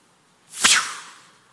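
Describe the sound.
A single sharp, hissing whoosh made by a voice imitating an arrow, or dart, flying past, rising quickly and trailing off over about a second, with nothing else around it.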